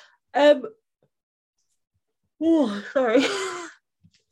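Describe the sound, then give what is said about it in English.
A brief vocal exhale, a pause, then a big, drawn-out yawn with a rising and falling voiced groan, fairly loud. “Big yawn.”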